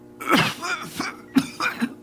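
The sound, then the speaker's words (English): A voice imitates a woman's fit of coughing: a few harsh, raspy coughs and throat-clearing bursts in quick, uneven succession, fairly loud, with no other sounds. “She was caught up in a fit of coughing and could not speak for some time.”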